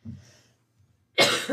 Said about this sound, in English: Oh my word. People, please pray for this. It's like a every other month thing where this cough just comes up.